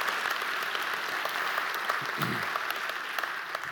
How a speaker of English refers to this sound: And the single biggest gift from any one person to make that trip happen was an anonymous college student that gave $1,500. That's worth a clap.